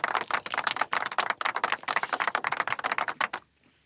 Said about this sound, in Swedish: Det är så abrupt slut på den applåden. De är nöjda.